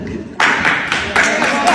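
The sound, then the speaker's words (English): Applause breaks out suddenly after a brief murmur, wedding guests clapping after a speech with a steady, rhythmic pulse that stays fairly loud for the rest of the short moment. “Let's hurry up and get the applause going to end this thing because it would have gone forever.”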